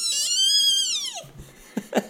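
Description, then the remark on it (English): A voice imitates a high-pitched excited squeak, one long, bright, wavering squeal that glides downward at the end, followed by a couple of faint breathy sounds. “I think it would be just a high-pitched squeak, which is like rats and bats and maybe cats and those kind of things.”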